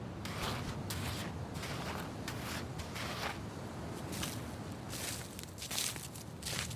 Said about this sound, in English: The grass here was up to my waist. I followed Val as he stomped out a thin trail.